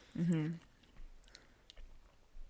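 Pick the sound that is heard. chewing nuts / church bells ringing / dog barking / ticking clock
chewing nuts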